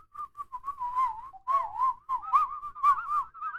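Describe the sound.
A person whistles a wavering, sliding tune, the pitch bending up and down in short continuous phrases with brief pauses between them, with no talking.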